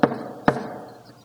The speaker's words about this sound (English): She knocks.